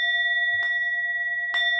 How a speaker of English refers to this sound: Class is starting. Here is the bell.